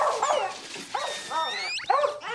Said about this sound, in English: It's fucking squeaking. Man, you never heard a dog squeak before?